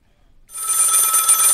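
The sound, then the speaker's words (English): A telephone bell rings loudly and continuously after a brief silence, a bright metallic trill sustained through the rest of the moment with no voices over it. “Get a new phone.”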